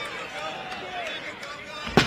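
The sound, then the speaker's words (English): A loud, sharp chair shot cracks once near the end as wrestler PCO strikes Khan with a chair, rising abruptly over a steady bed of crowd noise and voices talking. “Relentless chair shots, payback for the assault earlier.”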